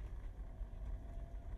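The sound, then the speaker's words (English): A steady, deep rumble of a car driving along Patrick Street in Cork at 8:45 on a wild, wet, windy Saturday morning with light traffic, with blustery wind noise buffeting over it. The low drone stays constant and fairly loud throughout, with no voices. “One of the wildest mornings, in fact, I've experienced. And I'm driving along Patrick Street now, heading on to our Leeside clinic”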